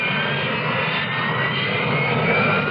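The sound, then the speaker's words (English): A loud, steady roar of a Harrier jet engine, a Marine Corps aircraft, dominates the whole stretch, a dense continuous rush of noise with a whining edge, unbroken, with no voices present. “It's a revolution in aviation, and the Marines are looking for good men to fly it.”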